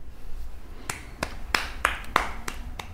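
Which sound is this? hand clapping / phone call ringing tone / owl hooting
hand clapping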